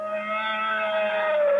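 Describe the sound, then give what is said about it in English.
The roar of a Dubek, a giant lizard creature ridden by troopers in the desert: one sustained, moaning bellow with a steady tonal quality that holds and swells slightly over under two seconds, loud, with no talking. “Just heard that cool Dubek roar.”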